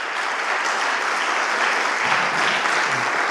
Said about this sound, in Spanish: Le puedes dar un fuerte aplauso al Señor.